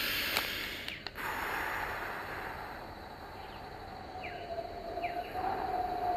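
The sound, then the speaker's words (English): A long, breathy exhale during a breathing exercise rushes out like wind, steady for several seconds, with a few faint chirps and a thin sustained tone creeping in toward the end. “With the last like wind sound on the wave.”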